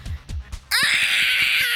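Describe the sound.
A person imitates an ape: three quick, breathy low hoots give way to a loud, sustained, shrill scream that holds steady, strained and piercing, for over a second.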